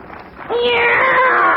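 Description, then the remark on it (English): A single drawn-out cat meow, close and fairly loud, rising then sliding down over about a second after a brief moment of quiet background. “Meow! It's a cat, Miss Brooks.”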